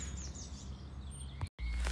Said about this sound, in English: It's Good Friday, it's the bank holiday weekend, we've got lots of birthdays, the birds are singing all around, it's going to be cracking.